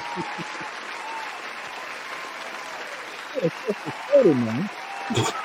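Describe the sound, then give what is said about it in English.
A steady wash of crowd applause runs throughout, dense and even, with a few faint vocal cheers and whoops rising over it near the end. “Let me give you your obligatory applause there.”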